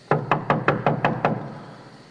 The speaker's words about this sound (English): knocked at the outer entrance, and a servant girl named Rhoda came to answer the door